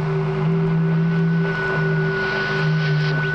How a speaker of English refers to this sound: Why not? We've bounced signals off the moon's surface. There's no reason that Venus shouldn't radiate impulses. I don't mean the static. Can't you hear it, the other thing?